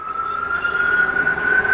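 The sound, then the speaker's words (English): Sirens wail steadily in the background as the funeral procession for fallen Officer Peter Jervin makes its way toward Brookfield, a sustained high tone that slowly rises in pitch over a constant low rumble, with no voices present. “You begin to hear some sirens there in the background as they make their way toward Brookfield.”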